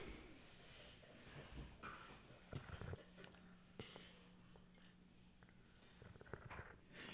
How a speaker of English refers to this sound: I hear those slurping sounds.